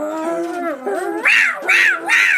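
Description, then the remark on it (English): A human voice imitates an evil demon cat's drawn-out, wavering yowl, then lets out three loud, rising-and-falling screeches in a row. “but instead they are turning into evil demon cats.”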